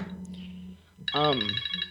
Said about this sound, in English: I'm like, I just kind of, my phone's ringing.